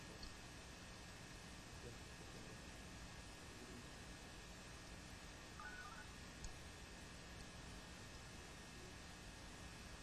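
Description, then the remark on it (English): A few brief, faint telephone keypad beeps as someone dials a phone call, over a constant hiss of static, with no talking. “Do you want me to call him?”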